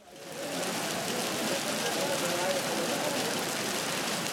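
Heavy rain pours down on Maasai lands during a gravel race, a steady, dense hiss that swells in within the first half second and holds loud and unbroken, with no voices over it.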